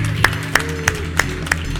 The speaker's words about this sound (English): Let's just give the Lord a hand clap this morning.